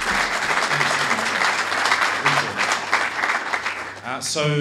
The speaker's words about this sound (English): Everyone give a round of applause again for our first speaker.